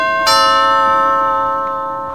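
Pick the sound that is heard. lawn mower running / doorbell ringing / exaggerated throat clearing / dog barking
doorbell ringing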